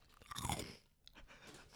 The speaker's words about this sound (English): Took a red flaming hot Cheeto. Let's crunch on this.